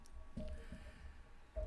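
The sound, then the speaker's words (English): A beer called Business Ethics, from a brewery in Tempe, Arizona, pouring into a glass, heard as a few soft, low glugging bursts with a faint fizzy wash between them, quiet, with no one speaking. “Let me pour this beer real quick.”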